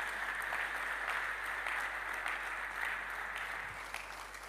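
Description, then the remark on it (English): A crowd claps steadily throughout, a dense, continuous wash of many hands at a fairly loud, even level, with no voices standing out. “A clap and sing in the house one.”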